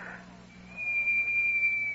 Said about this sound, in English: Uh-oh, I heard that. Yeah, I think that's the buzzer on the microwave.